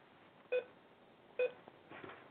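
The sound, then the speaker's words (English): Two short electronic beeps, evenly spaced about a second apart, clear and fairly loud over a low background hiss, with faint muffled noise after the second one. “Shut up with the beeping bitch.”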